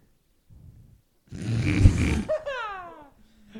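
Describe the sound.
A person imitates a goat with a loud, rough, buzzing bleat lasting about a second, ending in a wavering, falling whine. A faint low grumble comes just before it.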